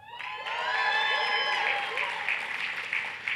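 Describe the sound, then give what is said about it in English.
An audience breaks into loud, sustained clapping in answer to who will attend an upcoming event in Detroit, with high whoops and cheering voices riding over the dense patter of hands for the whole stretch. “Who didn't clap?”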